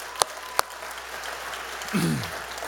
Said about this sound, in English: Yeah, somebody should clap for that.